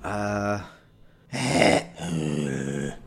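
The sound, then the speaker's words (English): A man's voice makes a low growling sound in three bursts, the middle one rougher and more guttural, each lasting about half a second to a second, loud. “He makes a growling sound in return.”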